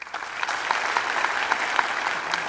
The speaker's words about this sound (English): Clap your hands if you think this is real. Clap your hands if you think this is fake.